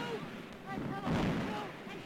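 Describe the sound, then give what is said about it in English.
A muffled, roaring explosion of a hydrogen-filled airship swells up midway through a hissy, old archival film recording, heavy and rumbling rather than sharp, with a voice faintly audible before and around the blast. “Here's when it explodes.”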